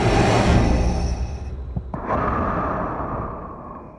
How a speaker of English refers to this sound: The last moment of this episode is the sound of Darth Vader breathing.